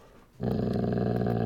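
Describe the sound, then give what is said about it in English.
A dog named Mahler growls in a low, rumbling, sustained snarl that starts abruptly after a short quiet moment and holds steady and loud to the end, with no clear separate barks. “as you can hear by Mahler's incessant. He's really going at it today.”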